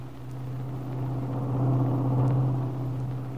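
car driving

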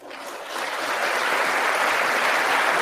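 applause

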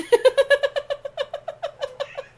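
cat meowing

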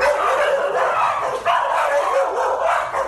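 small dogs barking

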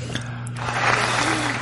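applause

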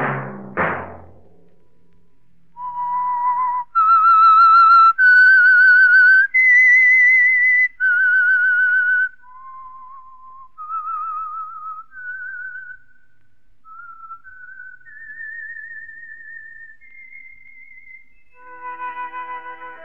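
whistled theme tune

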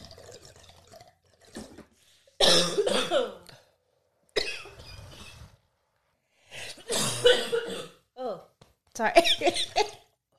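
hard coughing

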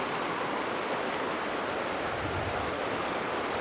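river water flowing

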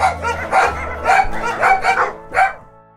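dogs barking

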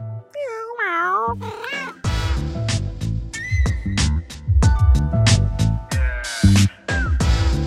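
cat meowing

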